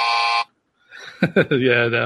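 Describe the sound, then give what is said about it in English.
A loud, flat quiz-show buzzer sounds once for about half a second, a harsh droning tone for a wrong answer. After a short pause, a person starts talking. “Unfortunately, as the buzzer went, because clearly I'm not allowed to give you the final answer thing, the actual answer is 0.1.”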